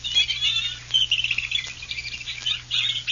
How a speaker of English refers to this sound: The birds of the swamp. Hear it? Listen to that.